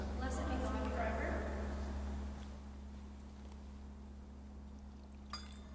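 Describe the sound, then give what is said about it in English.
A brief, small pour of water trickling into wine in a chalice, lasting about two seconds over a steady low electrical hum, with faint murmured speech. “By the mystery of this water and wine, may we come to share in the divinity of Christ, who humbled himself to share in our humanity.”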